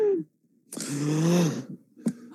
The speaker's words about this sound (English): Gasp. Is that how you do it? Gasp? No, it's gasp.